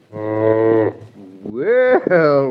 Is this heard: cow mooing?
yes